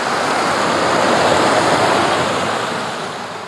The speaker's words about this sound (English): Hold on, let's do this creek crossing.